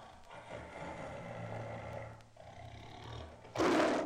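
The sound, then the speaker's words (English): A low, rumbling Sumatran tiger warning growl sustained over several seconds, with a brief pause before ending in a louder, harsher burst. Fairly loud, with no voices present. “This low warning growl belongs to the Sumatran tiger.”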